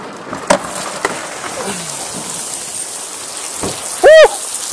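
Heavy rain pours steadily outdoors in Florida in a dense, constant hiss, with occasional sharper splashes and knocks, and a short loud vocal whoop cuts through near the end.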